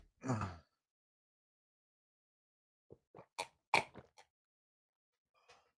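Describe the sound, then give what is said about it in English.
A quick breath, a pause, then a rapid run of about six loud, wet gulps as someone drinks water, followed by one fainter swallow. No one speaks. “Sorry for the loud water drinking.”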